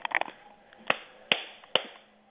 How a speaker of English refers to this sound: All right, if you could clap, like, really quick, like, you know, like, just real, like, fast, like, 3 times. Like, bam, bam, bam, 3 times through your hands.